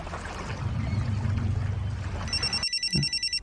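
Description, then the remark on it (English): A telephone rings with a bright, rapidly pulsing electronic trill near the end, following a stretch of low rumbling, rushing background noise. No one speaks. “So he called his family.”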